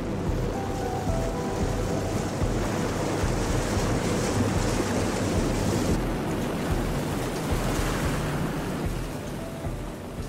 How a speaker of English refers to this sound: Today's wind and waves are stronger than usual.